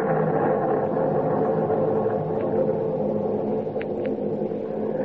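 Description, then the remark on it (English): A steady, deep rumble of thunder rolls on without a break as a storm breaks, loud and sustained, with a couple of faint higher crackles near the end and no voices. “Storm's breaking.”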